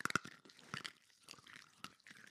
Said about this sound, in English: A moment of everybody crunching their Altoids into the mix. Yeah, go for it.